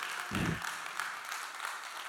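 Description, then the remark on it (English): A church audience clapping together as a clap offering to God at a morning service, a steady, dense wash of many hands applauding throughout, with a brief low thump near the start. “If you're happy to be in the house of God this morning, just give God a clap offering this morning.”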